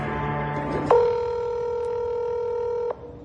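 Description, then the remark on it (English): A recorded telephone call being placed: brief dialing tones, then a single steady ringing tone that holds for about two seconds before cutting off. The sound is clear, with no voices. “The audio from that phone call is later released by authorities.”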